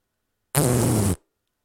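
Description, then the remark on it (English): A voice imitates a dog's fart with a single loud, buzzy raspberry lasting just over half a second, cutting off abruptly into silence. “She injected a dog fart into my ear.”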